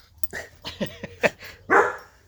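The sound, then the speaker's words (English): A female dog barks in a quick, uneven string of five or six short yaps, ending with one louder, longer bark, with no talking over it. “Your dog is desperate to be in this pod.”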